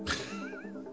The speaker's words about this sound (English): Like cat again. Meow! Meow!